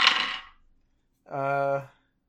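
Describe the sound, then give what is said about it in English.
A short, bright clatter of dice tumbling across a hard surface, fading within half a second, followed by a brief sustained vocal hum after a pause. “Rolling some dice here.”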